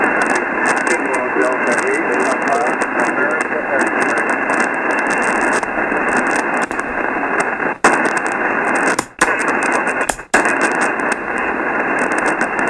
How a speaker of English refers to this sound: the static crashes are pretty bad. Your signal's not real strong. If I didn't have a static, I could talk to you.